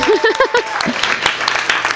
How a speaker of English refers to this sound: I just want to thank Skylight Books. How many of you guys, yes, applaud.